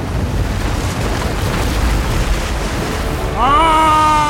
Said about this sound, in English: The branches retreated back into his body, and the dam disappeared, leaving no resistance for the raging waters flowing downhill.